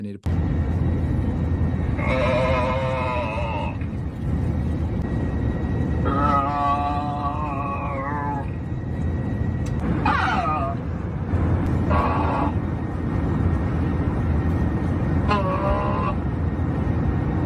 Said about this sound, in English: I think it may, unless a passenger snuck onto the intercom, it was the flight attendant or the pilot that was heard moaning over the intercom of an American Airlines flight. And just for like a while, like a long time.